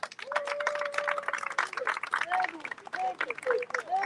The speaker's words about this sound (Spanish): Quiero pedirle un fuerte aplauso para todos los cubanos que estamos aquí.